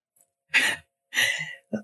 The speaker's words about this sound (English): I'm so sorry I'm coughing, guys. My allergies. I don't have Ebola over here. I just have my allergies.